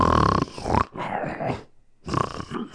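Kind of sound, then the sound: vocal imitation, imitated snoring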